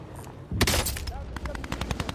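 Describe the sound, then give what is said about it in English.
Rapid bursts of video game gunfire crackle in a loud, dense volley, then continue as a steady rhythm of sharp repeated shots, with faint voices underneath. “I'm getting shot.”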